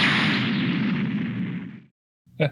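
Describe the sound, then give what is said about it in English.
An explosion sound effect for cardboard balls exploding after a pin goes through them: a loud, rumbling explosion with a broad, booming roar that slowly fades over nearly two seconds, followed by a brief silence and then a short, sharp burst. “Your pin goes through them, and the damage makes them explode immediately.”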